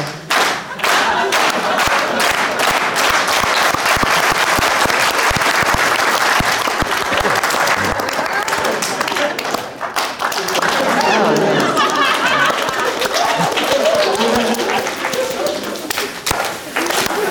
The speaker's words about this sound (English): That fast clapping sounded like a bunch of bats couldn't get out of the building.